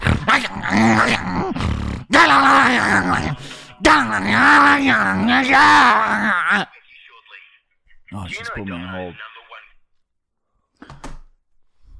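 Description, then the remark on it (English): A person imitates a dog, voicing three loud, strained bursts of growling and wavering yelps, then trailing off into quieter, breathy whimpers and a brief final grunt. “Wow, dude, you are a dog.”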